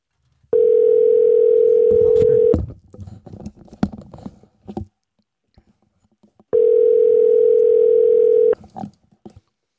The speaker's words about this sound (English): I'll give her a call at home and see if that's the right number.